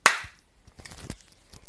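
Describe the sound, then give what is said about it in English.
A single sharp hand clap cracks out at the start and fades quickly, followed by faint, scattered rustling and soft low thumps. “Got you with the clap, baby.”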